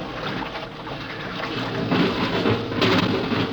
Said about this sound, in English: It's like an airlock. Water's being pumped out.